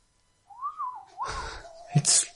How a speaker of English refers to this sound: What is this haunting tune? Yeah, going over the breeze. Whistling through the woodwind instrument that dangles to greet us.